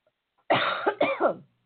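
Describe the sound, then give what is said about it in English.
A loud burst of coughing, two or three harsh hacks in quick succession lasting about a second, with no talking. “I'm sorry, no cough button.”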